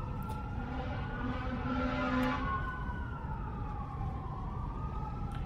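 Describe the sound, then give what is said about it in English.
An emergency vehicle siren wails steadily throughout in a town, its pitch slowly sliding up and down, over a constant low rumble of traffic. No one speaks. “It's rare to hear sirens in this town.”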